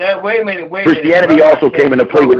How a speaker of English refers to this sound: First, we got echo going on. So anybody that's on, mute your phone if you're not speaking.